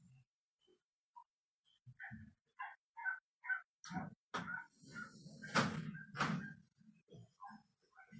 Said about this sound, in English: As I'm sitting here teaching my Dharma class on Wednesday night and fantasizing about shooting my dog from the window up here so he'll stop barking.